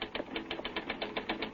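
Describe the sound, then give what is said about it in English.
Rapid, steady typewriter keystrokes clatter as someone pounds out a news story lead, in a quick even rhythm, about seven or eight sharp clicks per second, moderately loud, with no voices. “Get that typewriter. Huh? Start pounding out a lead.”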